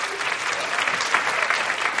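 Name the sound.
audience applause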